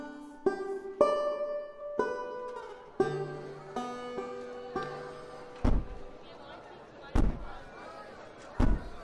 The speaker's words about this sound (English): That a knock in the door.